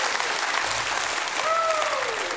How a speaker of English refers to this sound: Somebody give Him a hand clap and a shout of praise in the house.